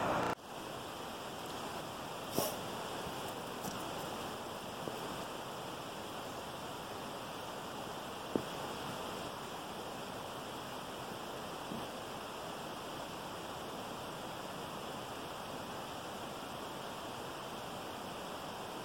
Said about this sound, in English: But I'm still fascinated by the sound coming from the lower waterfall there. Looking forward to getting some better pictures of that closer.